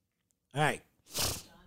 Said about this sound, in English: All right. Boy, sorry for all the snot and sneezing and all that.